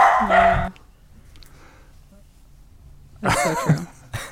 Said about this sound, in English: That's so true. Dogs barking.